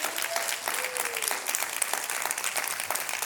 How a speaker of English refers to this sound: And I know we don't take clap breaks in our house, but I wish you'd clap your hands right now in your house right now.